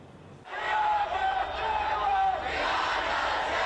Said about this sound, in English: Voices chanting her name filled the air in the early evening.